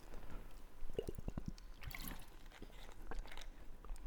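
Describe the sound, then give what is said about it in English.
Someone drinking, picked up loudly: a quick run of low, wet gulps and swallows, followed by softer gurgling and squishy liquid sounds, with no talking. “It's not every day you can hear me drinking Amplified.”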